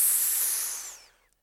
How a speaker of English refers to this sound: But his creatures know him for their leader and open their deadly jaws wide in recognition. Hiss!